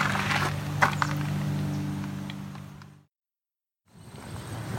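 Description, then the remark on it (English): A steady low engine drone with a faint hum of tones from an airplane coming in overhead sits under broad outdoor noise, cuts out briefly to silence, then returns. “Got an airplane coming in, so that probably ends that.”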